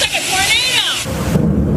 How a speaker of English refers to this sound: This week's multi-day stretch of relentless back-to-back thunderstorms. Unloading dangerous winds, hail and lightning.